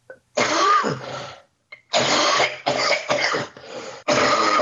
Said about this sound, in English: It's a non-productive cough, man. Ooh. Got to get you some Mucinex. Mucinex, young man. Even my fucking coughs are lazy as fuck, man. Non-productive fucks. Damn layabout cough.